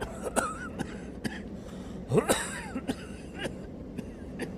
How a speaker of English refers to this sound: all of a sudden an old man in his 70s, dressed in dirty, torn clothing, comes staggering out of the darkness, coughing.